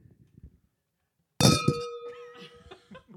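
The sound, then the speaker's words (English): Wine glasses clink together sharply in a toast, leaving a bright ringing tone that hangs in the air. Quiet murmuring comes before the clink, and several voices chatter as it fades. “Do all have wine, so we're gonna do a cheers.”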